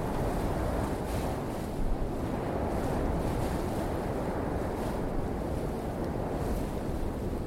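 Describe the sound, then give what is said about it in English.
Wind blows steadily and loudly for the whole stretch, a continuous rushing roar with a deep low rumble and faint gusty swells, with no voices. “Hull describes his discovery that the sound of the wind could activate an otherwise imperceptible environment.”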